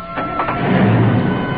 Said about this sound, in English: There's his car starting up. She must have slipped out of the kitchen without me even noticing. Yeah. She's in the car with him. They're ready to go.